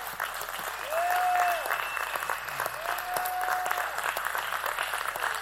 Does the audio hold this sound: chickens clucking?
no